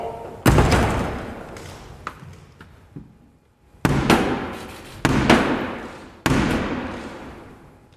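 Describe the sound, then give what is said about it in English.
The door of the House of Commons slams shut with a booming echo, followed after a pause by three slow, loud knocks on it by the monarch's representative, Black Rod, summoning the MPs, each knock ringing out. “The monarch's representative, and in the tradition, will have to knock on the door of the House of Commons. Close the door!”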